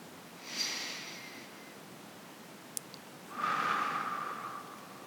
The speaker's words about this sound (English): Deep breath through your nose and out through your mouth. Take one more deep breath in. And as you exhale, follow the sensation of the breath as it leaves your lungs and out through your mouth.